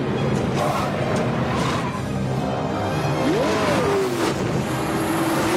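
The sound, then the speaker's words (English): A car driven by a worried-looking henchman roars steadily along a street, its engine pitch surging upward in a rev about halfway through before settling, loud and continuous with no voices. “and one of them looks really worried driving down the street.”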